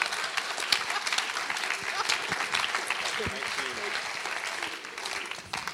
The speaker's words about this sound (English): So why don't we give these guys a big round of applause?